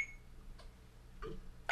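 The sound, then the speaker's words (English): A short, high electronic beep signaling the start of a recording rings out at the start and quickly fades, followed by soft handling clicks and rustles, then another beep begins at the end amid louder noise. “Once you hear the beep, it'll start recording.”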